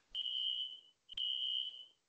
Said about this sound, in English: Are you having a fire escape? A fire alarm? Do you have to exit? No, I'm good, man. Are you sure? Yeah, I'm sure. Somebody probably overcooking their dinner or something.